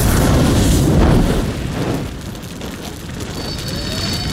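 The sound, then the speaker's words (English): A loud, deep explosion roars up front, its heavy low rumble holding for over a second before easing into a lingering, crackling rumble with faint debris-like hiss; no voices. “And it had the fun explosions and, you know, action scenes.”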